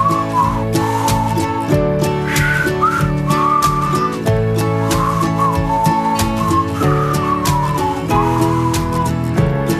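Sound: whistling a tune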